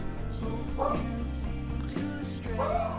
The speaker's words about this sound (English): Hold on, my dog's barking like a maniac. Walk out there, my dog's hair is standing up on his back. And he is just standing on the couch barking just like a fucking freaking maniac.